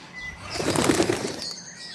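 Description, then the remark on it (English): A parrot on an island flaps its wings in a quick, fluttering burst that swells and then fades as it takes off and flies away, with no voices present. “And he's gone. Sorry about that. I've been playing Spot the Unilever Brands with one of the island's parrots.”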